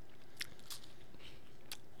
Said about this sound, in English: Well, it looks like they, like, took, like, pumpkin pie filling and kind of put it in there. Oh, let's listen to him chew.